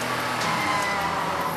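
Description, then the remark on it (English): A truck engine runs steadily, a dense, continuous rumble with a low hum underneath and no pauses or speech, holding the same fairly loud level throughout. “Drive it? Trucks don't drive by themselves.”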